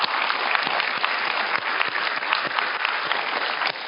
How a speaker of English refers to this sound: So can we just pause and clap our hands and thank God for our pastor today?